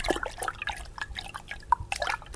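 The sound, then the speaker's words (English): A wet wipe plopping into a jar filled with water, followed by a scatter of quick drips and small splashes, fairly quiet and irregular, with no voices; a demonstration of what happens when a wet wipe is flushed down the toilet. “So here I have a jar filled with water and I'm just going to pop a wet wipe into the jar.”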